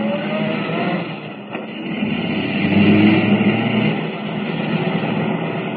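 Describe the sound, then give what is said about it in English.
A car engine roars at speed in a radio drama chase, Kent's car pursuing a blue roadster: a steady rushing drone with a deep growl that swells louder midway before settling, loud with no voices. “Can the car Kent is driving keep up with the blue roadster?”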